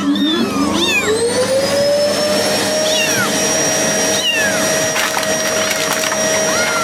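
A few thin, high-pitched meows from two tiny kittens held in a bag sound in short bursts over a loud, steady mechanical whine that rises at the start and then holds like a motor running.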